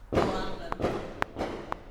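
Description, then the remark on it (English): Fireworks pop outside in three quick, evenly spaced, sharp bangs while indistinct voices murmur underneath. “Don't worry, it's just fireworks.”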